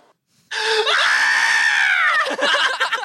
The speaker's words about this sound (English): Is this going to go back to him screaming?